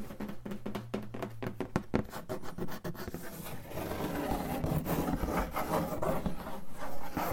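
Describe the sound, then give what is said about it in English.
Cardboard being rubbed and scratched: a run of quick, dry scraping strokes gives way to a steady, rough rasping friction that continues at a fairly even level, with no voices. “What else? Cardboard.”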